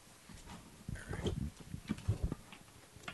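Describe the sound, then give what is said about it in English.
A deck of playing cards being shuffled, a quick burst of papery riffling and soft slaps lasting a couple of seconds. “Shuffle this shit.”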